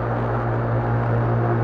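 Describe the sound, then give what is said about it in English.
A steady, sustained modular synthesizer drone from four oscillators, two wavetable VCOs and two analog oscillators feeding a crossfade array, with a deep, buzzing low tone and layered harmonics, holding at an even, fairly loud level throughout with no talking. “So we're listening to a lovely drone that Graham has patched up.”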